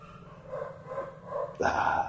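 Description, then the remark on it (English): A puppy gives a few short, high-pitched yips and whines, ending in a sharper, louder bark, heard alone against a low background hum. “Puppy.”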